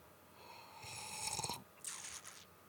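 A noisy slurp as a dark beer is sucked in with air to taste it, demonstrating a slurp rather than a sip: a rough, slightly whistling intake lasting about a second, then a shorter airy burst, with no talking.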